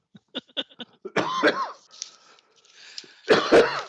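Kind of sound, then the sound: human body sound, coughing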